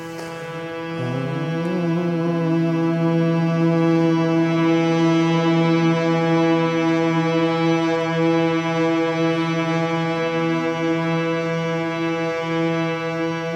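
A voice hums a second, higher note: one long, steady note that slides briefly upward at the start and then holds a constant pitch, loud and unbroken for over ten seconds with no talking.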